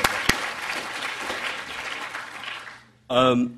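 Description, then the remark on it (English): An audience applauds with a dense, steady patter of clapping for about three seconds, tapering off before a single voice begins speaking. “They're not going to clap for me.”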